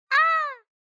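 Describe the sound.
A person's voice imitates an eagle call: one short, high, nasal screech lasting about half a second, holding steady and then dipping slightly before cutting off, with silence after.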